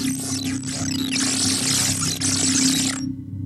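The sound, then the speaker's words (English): An encryption handshake pulse, sent while broadcasting in search of an encryption key as part of a five-part randomized sound clip: a dense burst of warbling, sweeping electronic chirps over a steady low hum, lasting about three seconds before cutting off abruptly and leaving only a faint drone. “Sending encryption handshake pulse.”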